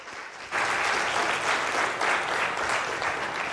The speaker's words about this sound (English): So can we give him a warm round of applause?